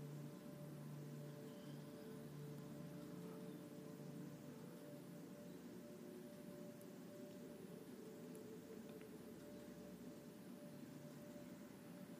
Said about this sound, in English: Watching the rain on the water's surface, making ripples all the way across. That rain replenishing, cleansing and refreshing.